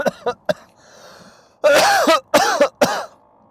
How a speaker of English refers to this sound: That was the fucking first cough of the whole show. I'm very glad I made it this far.